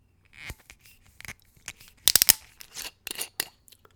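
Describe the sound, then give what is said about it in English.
A screw cap is twisted off a bottle of spirit being opened for a tasting: a run of dry, crackly clicks and scrapes, with a sharp burst of ratcheting snaps in the middle and a few more clicks after, no voices. “So without further ado, let's go ahead and open this bottle up and give it a taste. So here goes the screw cap.”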